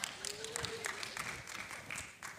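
Several people clap steadily at a moderate level, the hand claps overlapping into a short, even burst of applause with no speech over it.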